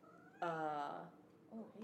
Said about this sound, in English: that's my cat.